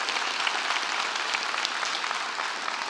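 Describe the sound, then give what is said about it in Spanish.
A church audience bursts into sustained applause for God, many hands clapping at once in a dense, steady wash of noise that holds level for the full few seconds without any voices. “¿Cuántos le pueden dar un aplauso fuerte a nuestro Dios por su presencia, por su bondad, por su misericordia en este lugar?”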